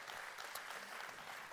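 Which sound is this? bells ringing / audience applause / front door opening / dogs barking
audience applause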